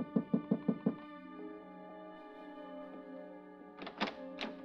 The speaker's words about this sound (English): I was right behind her when she stopped in the lobby and got a key to room 1016. I gave her 5 minutes, then I knocked on her door.